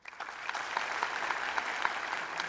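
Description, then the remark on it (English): An audience claps its hands in a steady, dense patter of many overlapping claps, sustained for a couple of seconds at an even moderate loudness with no voices on top, voting that a news story they were asked about is fake. “Clap your hands if you think this is fake.”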